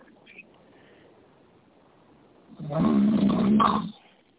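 A single loud, rough snore-like rumble swells up after a few seconds of low background noise, lasting about a second and a half before cutting off.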